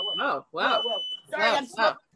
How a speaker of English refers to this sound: I mean, that's a sign of a nice life, is when your joint sets off a fire alarm while you're so real.